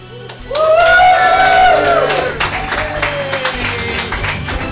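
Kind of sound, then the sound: crowd, audience applause and cheering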